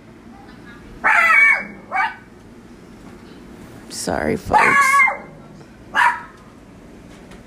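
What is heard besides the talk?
dog barking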